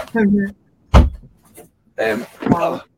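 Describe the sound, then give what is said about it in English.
A door opens with a single low thunk in a pause between bursts of talk, with voices both before and after it, as someone comes into an interview space. “Sorry, somebody's at my door, it seems.”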